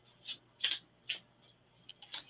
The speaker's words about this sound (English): Oh, now I shuffled those cards several times and you got the same card as Veronica.